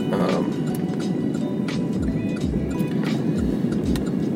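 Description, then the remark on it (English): Steady outdoor street ambience with a low rumble of vehicles, a few cars sweeping past amid continuous background noise, no one speaking. “So although it still feels kind of busy a lot of times, like even right now, it's like, you know, there's still like a little, you know, a little bit of traffic here and there, but it's not anything crazy.”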